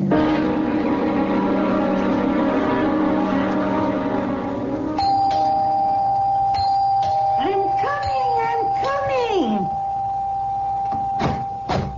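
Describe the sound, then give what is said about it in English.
A young man rings a doorbell insistently, its tones sounding again and again, with a steady electronic hum underneath and voices speaking over the end of the ringing. “Rip the bell off the door, young man.”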